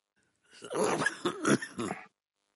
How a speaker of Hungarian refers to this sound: Egy rab nagyon köhög. Bocsánat.